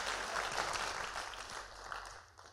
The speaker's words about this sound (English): Clap your hands like you're catching this. Come on, people. You guys are on.